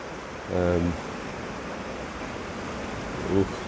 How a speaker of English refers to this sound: Yeah, so nymphing here. The wind is coming downstream, so there's a bit of a bit of a push on the line, but it was still still fishing okay.